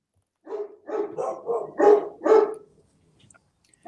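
A large dog named Damien barks about six times in a quick, steady series, loud, then falls silent. No one speaks over the barking.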